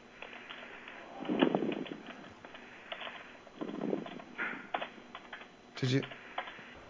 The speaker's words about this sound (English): Are you typing? Yeah. Are you doing like an instant message or what are you doing?